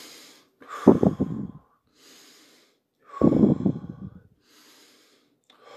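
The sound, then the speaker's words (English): Two loud, deep breaths about two seconds apart, each a rough, forceful rush of air, with quieter breathy intakes between them and no talking; a person taking deep breaths. “Take 3 to 10 deep breaths, and we choose love.”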